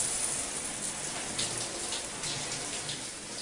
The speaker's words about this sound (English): So we enter Elon's shower. It's so bitter and cold in here. It just makes me want to pee. Hearing that sound.